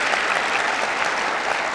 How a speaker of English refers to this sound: And yeah, we can clap for that. Thank you.